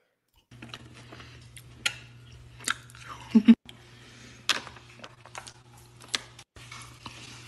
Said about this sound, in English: Panda's Express chicken egg roll. So crunchy, so good.